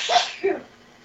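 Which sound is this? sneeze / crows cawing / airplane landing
sneeze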